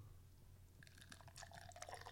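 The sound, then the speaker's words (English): Beer pours from a can into a glass after a short quiet lead-in, a soft continuous splashing and fizzing over a low steady hum, with no one talking; the pour leaves a foamy head about 5 inches tall. “Wait, I'll pour the can like right now.”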